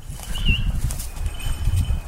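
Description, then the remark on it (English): Low, soft whooshing beats of a hawk's wings flapping, irregular and muffled, with a short high whistle-like chirp early on and no talking. The hawk, Emmy, is following people from above, flying from tree to tree. “She's following us from above, from tree to tree.”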